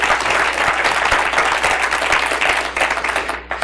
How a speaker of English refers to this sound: Are y'all with me? If you are, give God a hand clap of praise.